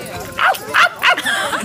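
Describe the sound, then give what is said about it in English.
Toto the dog, told to speak, gives three quick, sharp barks in a row, fairly loud, with short pauses between each yip. “Can't you speak? Toto, speak. Speak.”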